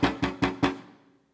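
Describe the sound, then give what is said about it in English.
Four quick, evenly spaced knocks on a door at 4 a.m., each a firm hollow thud with a low resonant ring that fades out after the last one. No voices are present. “Well, at 4 a.m., a knock on the door.”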